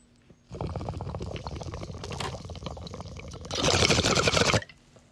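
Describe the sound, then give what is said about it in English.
Steady gurgling of a water pipe as someone takes a hit from a freshly packed bowl of Trop Funk cannabis, about four seconds of continuous bubbling that swells into a louder, airy rush before cutting off abruptly. No one speaks. “I don't know if you're taking another rip with me or not, but you should if you want to get more high.”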